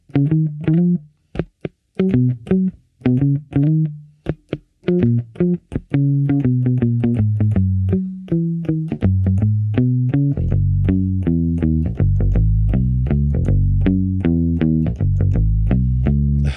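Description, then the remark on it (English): A short-scale electric bass strung with Dunlop strings and played with a pick plays a bouncy melodic line, first in clipped staccato notes, then settling into a steadier, fuller run low in the register. Clear, with no talking. “Here are these Dunlops with a pick. Like play some …”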